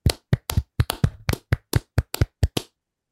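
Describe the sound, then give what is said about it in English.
A short burst of hand clapping: about a dozen sharp, crisp claps in a quick, slightly uneven rhythm, a few landing almost together, with no voices, before it stops abruptly into silence. “And let's do, as we always do at the end of every bracket, let's go ahead and clap it out.”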